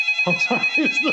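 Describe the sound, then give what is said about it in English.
An early-1990s Panasonic electronic cordless phone rings with a warbling, chirpy trill, about four quick pulses over a steady high tone, fairly loud, with no talking. “That's like an early 90s cordless. Panasonic cordless phone ring.”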